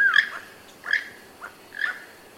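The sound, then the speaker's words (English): A keel-billed toucan gives a series of harsh, creaky croaks, three or four spaced roughly half a second apart, moderately loud, with no voices. “The keel-billed toucan, also known as the rainbow-billed toucan, looks like a bird with a giant banana for a beak.”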